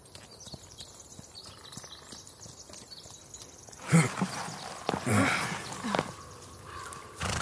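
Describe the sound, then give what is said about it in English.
Horses' hooves clip-clop at an easy pace, quiet at first, then louder and busier with scuffing and shuffling before the movement settles, as the horses are brought to a halt to rest during a trip. “We should stop for a bit. Let the horses take a rest.”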